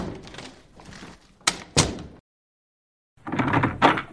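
A side door opens and shuts as someone slips out, with a couple of sharp wooden clunks and some shuffling, then a brief silence before more rattling movement and another knock-like thud.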